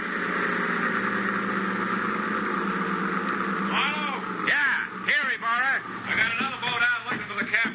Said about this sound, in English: That boat coming in is probably Ibarra.